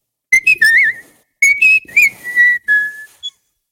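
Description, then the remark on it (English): A person whistles a short, bright tune in two quick phrases with a brief pause between them, clear, with no talking. “I'm just going to whistle.”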